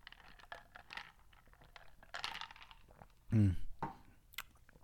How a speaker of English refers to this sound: But that's when I was like, okay, the way I drink it is very odd. I'm glad I don't have a camera on me right now, because you guys can't see how weirdly I drink my soda, which I'm going to take another sip of in just a second.